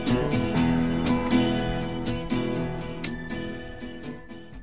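A bicycle bell rings with a bright metallic ding that lingers and slowly fades, following a few seconds of busy, rhythmic tonal sounds. No one speaks.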